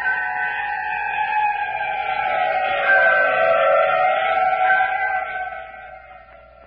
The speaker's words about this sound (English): Outside, the ravaging howls of the wolfmen. Khmer priests answering the call of the leader of the pack.